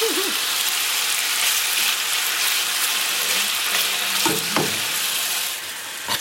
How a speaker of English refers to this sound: You're getting those nice frying sounds.